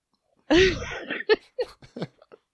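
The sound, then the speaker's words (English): A harsh coughing fit: one loud, drawn-out cough followed by several shorter, fading coughs in quick succession. Nobody speaks. “Sending me into a coughing fit.”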